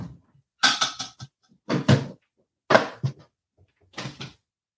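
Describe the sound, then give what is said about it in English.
A drawer is pulled open and its contents rummaged through, with four short bursts of clattering and scraping separated by brief pauses. It is fairly loud, with no talking. “What else is, you want to see what else is in this drawer?”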